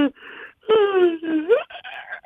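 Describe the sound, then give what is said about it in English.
A person lets out a loud, exaggerated yawn: a breathy intake, then a drawn-out moaning tone that sags and lifts again, trailing off into breathy sighs. “So basically, the trick is yawning and stretching a lot.”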